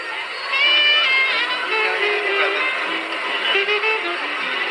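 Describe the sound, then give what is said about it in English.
A large crowd in Greenville cheers and shouts in a steady, bright roar as Senate Majority Leader Bob Dole and Elizabeth Dole attend, with high voices and whistles rising above the din, holding loud for several seconds. “It was a special honor for us to have them come here to Greenville, and they are certainly enjoying themselves, as is the crowd.”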